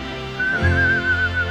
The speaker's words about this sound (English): The Meadowlarks whistling in the background. It's the Monday Meadowlark.